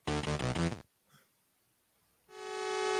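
A loud, harmonically rich video game train horn sounds twice: a short burst, a pause, then a long, steady tone that holds to the end, with a clean synthetic quality.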